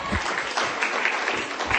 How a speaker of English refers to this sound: Okay. Yeah, that's great. Thank you. We can clap for that.